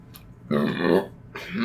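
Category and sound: human body sound, burp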